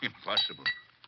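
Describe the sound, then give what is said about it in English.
Two quick, bright glass clinks ring out as a bottle meets a glass while brandy is poured, partly under a man's speech. “You wouldn't have a brandy lying around loose, would you?”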